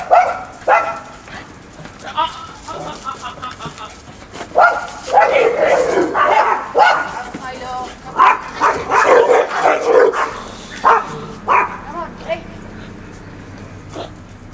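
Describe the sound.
A dog barks repeatedly in short, uneven bursts, mixed with whiny yips and whimpers, while a person talks intermittently.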